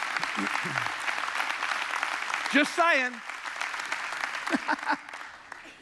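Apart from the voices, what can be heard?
audience applause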